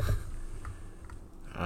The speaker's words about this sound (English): Ignore my terrible typing here.